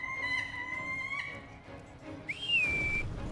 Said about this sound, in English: I whistle to Ista, who uses her turn to fly straight up for a full round.